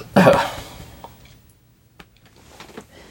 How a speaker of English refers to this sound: Let me get that hiccup burp out. Yeah, that burp of jealousy.